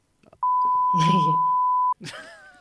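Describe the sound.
A steady, high-pitched censor beep holds for about a second and a half, covering a voice talking underneath, and then ordinary speech picks up right after it cuts off.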